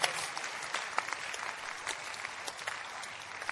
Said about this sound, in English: Clap for Jesus, somebody. If you believe it. If you don't believe, don't clap and continue thinking about what to eat and what to drink and where to stay and even how to marry.